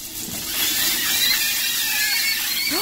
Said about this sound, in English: Well, maybe you've noticed this if you've actually cooked sausages before. I do cook sausages, and I've not heard anybody screaming while I do it. Tell me if the frying sausage makes this sound.